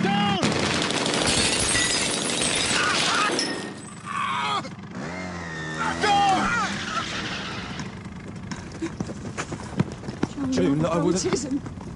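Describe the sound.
Loud, rapid bursts of gunfire crackle through a dense, chaotic drama scene in which the character Joe Morgan is shot while trying to warn June Ackland of an attack on her car, with shouting voices and commotion mixed in and a few sharp cracks standing out near the end.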